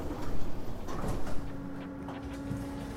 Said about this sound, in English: Doors opening.